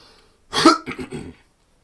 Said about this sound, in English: You might hear me cough from time to time in this episode because I still technically have symptoms.